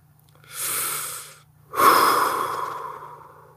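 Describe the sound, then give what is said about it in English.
Two loud, exaggerated breaths: a sharp breathy inhale, a brief pause, then a long, forceful, slightly voiced exhale, like someone mimicking labor breathing while pretending to give birth. No talking. “So we're giving birth, fuck.”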